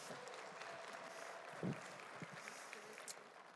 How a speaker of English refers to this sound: So everyone, give my friend Melissa a big round of applause.